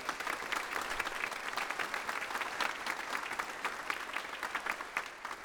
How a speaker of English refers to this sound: And so will you welcome them with your round of applause. Bravo.